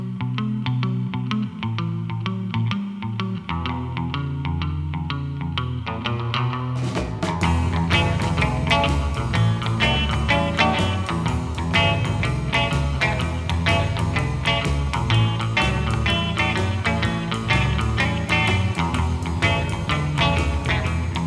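An instrumental rock tune with echoing guitar plays on a steady driving beat; about a third of the way in, the sound suddenly opens up, becoming brighter, fuller and louder.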